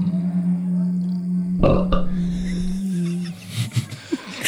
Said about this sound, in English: There we go. There's a rating of 2. Was that a belch?